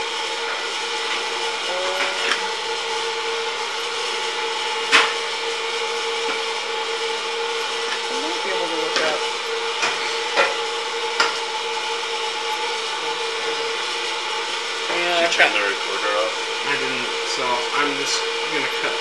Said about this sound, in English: Everyone please enjoy popcorn noises. Or no, if you really want to enjoy the popcorn noises, I'll leave it in.